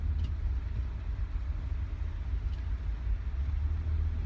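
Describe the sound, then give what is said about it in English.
Steady, loud low-pitched rumble of a car idling or creeping along in highway traffic, heard from inside the vehicle, with constant engine and road drone and no voices. “I'm stuck in traffic on the highway.”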